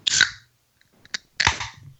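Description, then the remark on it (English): An ice-cold can of Coca-Cola Zero Sugar cracks open with a sharp burst of fizzing hiss, then a couple of small metallic clicks, followed by a second hissing rush that fades out. No one speaks. “Oh, and that, my friends, is an ice cold Coca-Cola Zero Sugar.”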